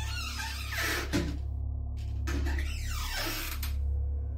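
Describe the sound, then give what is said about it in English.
Kitchen cabinet doors bang shut twice, about two and a half seconds apart: sharp knocks over a steady low hum and some scraping, shifting noise. No one speaks. “Why are your cabinets doing that?”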